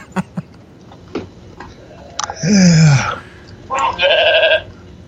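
A goat bleats twice, a loud wavering cry followed by a shorter quavering one, after a few faint clicks and taps in otherwise quiet surroundings.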